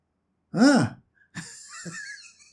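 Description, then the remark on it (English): A forceful breath out during a breathing exercise, starting with a loud, voiced sigh-like burst and followed by a longer, airy exhalation, with no talking. “And if you are breathing out, then is it, just imagine, if I'm breathing out just now. I've finished. I'm exhausted.”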